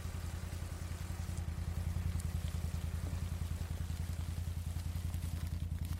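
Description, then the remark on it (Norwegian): A test-drilling machine runs several hundred meters away near the top of Engebøfjellet in wind, rain and sleet, a steady, rapidly pulsing low throb that never lets up, with a soft hiss of rain spread over it and no voices. “Og vi kan høre at maskinen I gang flere hundre meter unna.”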